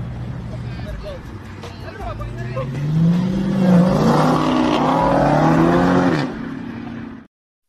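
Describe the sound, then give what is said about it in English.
A small clown car's engine revs as it pulls away, carrying Bryce Young leaving Soldier Field after a Carolina Panthers loss. Its pitch climbs steadily for several seconds before cutting off abruptly, with background chatter from people. “In his little clown car?”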